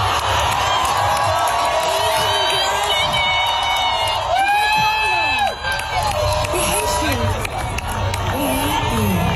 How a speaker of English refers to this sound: It was a remarkable moment. You had thousands and thousands of thousands of people cheering.